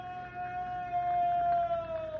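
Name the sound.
distant scream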